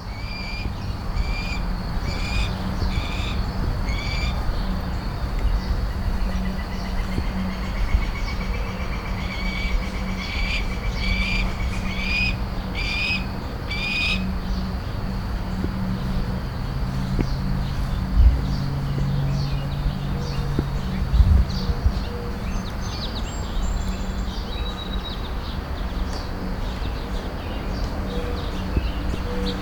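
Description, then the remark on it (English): Young red-tailed hawks call in a neighborhood in short bursts of high, repeated squealing cries, with a few thinner cries later, all over a steady outdoor hum of traffic. “Was a neighborhood with what I think are adolescent red-tailed hawks.”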